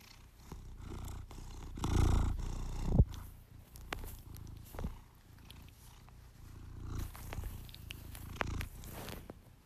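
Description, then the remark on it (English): A cat purrs in a steady, low rumbling rhythm, swelling louder for a moment early on, with small clicks and rustles scattered throughout and no one talking. “if I record Marky with his purring, let's see if we can get it going here. Listen.”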